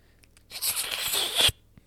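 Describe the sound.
A voice imitates sipping tea: one airy, hissing slurp lasting about a second, growing slightly louder before it cuts off abruptly. No one speaks.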